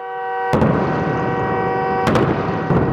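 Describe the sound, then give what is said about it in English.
Artillery shelling by Russian forces on a Ukrainian city: three heavy booms strike at uneven intervals, each followed by a long rumbling roar, with a steady droning hum running underneath and no voices. “In a city Russia cannot own, only crush, with seemingly inexhaustible shelling.”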